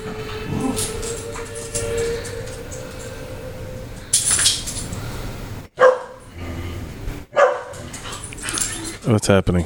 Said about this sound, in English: What's happening? Is this a thing? Oh, the dog out there.